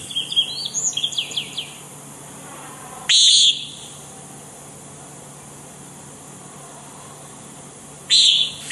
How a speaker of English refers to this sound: But you get outside around 7 o'clock, 7:30, and you may see them flying erratically in the nights, in the evening sky, again hunting for insects as they work their way south. The common nighthawk. Take another listen here.